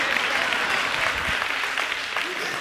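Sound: audience applause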